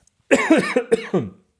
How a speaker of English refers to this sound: This is not a corona cough.